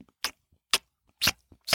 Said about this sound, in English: That was me chewing.